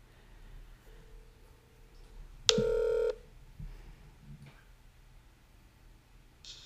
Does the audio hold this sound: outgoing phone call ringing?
yes